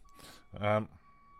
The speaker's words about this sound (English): Beeping. There's beeping in the background. Is that the binman?